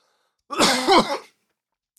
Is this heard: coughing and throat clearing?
yes